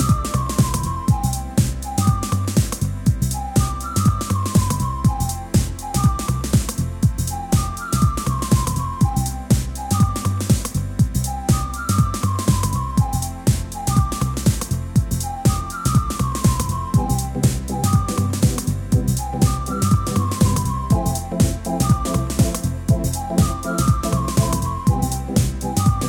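An instrumental house track with a steady four-on-the-floor beat, a deep bassline and a bright, whistle-like lead melody looping in short rising and falling phrases, with no vocals.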